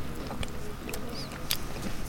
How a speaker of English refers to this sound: Okay, well, have a bit of a nibble. Let me know what your thoughts are on the tarallini. Does it have a lemon pepper taste to it? Certainly got the crunch factor by the sound of it.